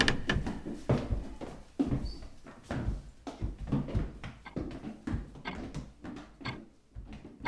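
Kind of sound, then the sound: household object, doors opening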